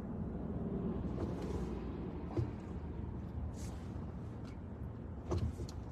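A bus rumbles past on Washington Avenue, a steady low roar of engine and road noise with a couple of brief knocks, continuous.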